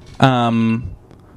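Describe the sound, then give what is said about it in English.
An alarm sounds once: a loud, steady, harsh buzzing tone with a fixed pitch that lasts just over half a second, then cuts off into near silence. “That's like such a stressful alarm.”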